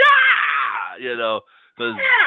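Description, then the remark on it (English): A man lets out a loud, strained, rising scream in two bursts with a short gap between, imitating Howard Dean's famous political rally scream. “We need the Howard Dean scream.”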